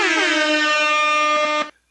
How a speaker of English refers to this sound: Oh, man. It's been like 5 years it took me to finally remember to just have the instant rap air horn sound effect button up on my screen. Ready to go.